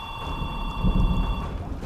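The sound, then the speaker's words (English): A telephone rings with a steady, shrill electronic tone that holds for over a second before fading, over a low rumbling background and no voices. “Are you gonna answer it?”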